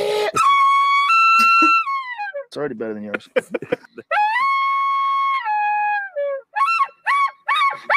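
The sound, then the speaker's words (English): A person imitates an elk bugle with their voice: long, high, whistling tones that rise and hold, broken by a low grunting croak, then a few shorter squealing bursts, loud, with brief talk mixed in. “That's the other thing you do. You make a bugle like...”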